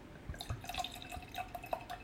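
Wine pours from an already-opened bottle into a glass in a short, gurgling stream with bright ringing glugs and drips over about two seconds, with no talking.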